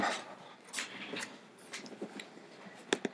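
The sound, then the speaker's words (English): A small dog whines and lets out a few short, soft yips in scattered bursts, fairly quiet, with no talking. “I'm not picking you up. Go lay down. Little rat dog.”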